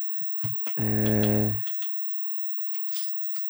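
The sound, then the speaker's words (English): Scattered clicks of typing on a computer keyboard, a few quick keystrokes before and after a loud, steady tone that lasts under a second. “Are you just typing that in?”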